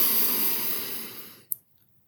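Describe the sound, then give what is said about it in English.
A steady, airy breath drawn in through the nose for a count of four, the inhale of a box breathing exercise, gradually tapering off before a small click and then near silence. “So you breathe in for 4, and I'll do it with you right now.”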